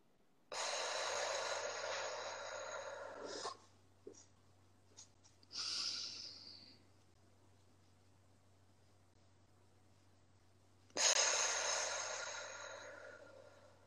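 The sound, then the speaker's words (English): Slow, deliberate paced breathing: a long airy inhale through the nose for a count of four, a pause held for four, a shorter exhale out through the mouth for four, a longer silent hold, then another steady inhale beginning. No talking. “So it's gonna be four in the nose, and then you're gonna hold it for the four.”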